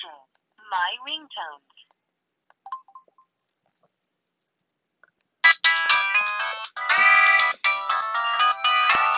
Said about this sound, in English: Now here are the ringtones. That was the Verizon Wireless, or the Verizon Wireless one.